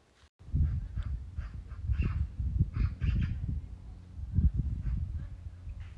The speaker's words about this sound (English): You hear that animal? A little bird? So cool, all these little sounds they can make.